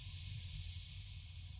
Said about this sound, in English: There's a hiss that starts, and gas is beginning to fill the room.